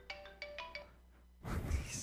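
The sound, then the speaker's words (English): An Android phone ringtone plays a quick run of bright, melodic electronic notes for about a second, then stops abruptly and gives way to a burst of loud, rough noise. “Calling Redban? It's calling you.”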